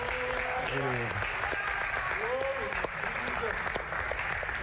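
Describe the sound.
A church crowd applauds a group after their ministration, in a dense, even roar of clapping that lasts the whole stretch, with a few voices calling out and cheering above it.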